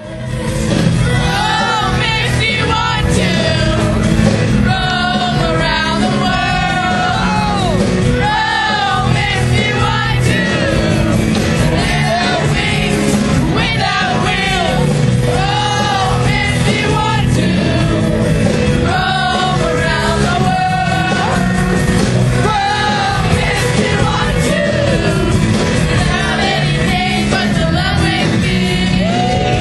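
A large crowd of concert fans sings along loudly together over a dense, steady wall of sound, many voices blending into wavering melodic lines, with occasional shouts and whoops rising from the mass.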